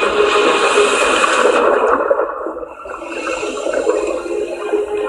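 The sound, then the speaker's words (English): A diver plunges into restricted sea waters near Pakistan and loud, rushing underwater bubbling surrounds the listener, easing briefly midway before the muffled churning and gurgling build again. No one speaks. “But with rare government permission to explore these waters, I dive in, eager to see what the scientists have found beneath the waves.”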